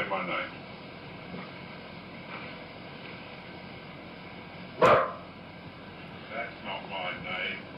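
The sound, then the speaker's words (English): A girl's voice imitates a dog with one sharp, loud bark partway through a muffled, hissy recording. Faint murmurs and low background noise fill the rest. “So is that the girl barking there then?”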